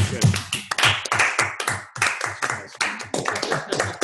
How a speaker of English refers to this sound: I think we should just throw another round of applause